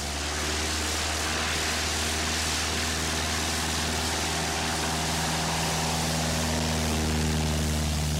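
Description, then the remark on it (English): A white and orange Cessna 310C propeller plane's engine drones steadily and loudly as it takes off, its low harmonic hum holding constant with a broad roar of air over the top, and no voices. “4 minutes later, he lifted off.”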